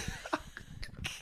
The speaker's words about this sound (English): All those dad noises and coughs really.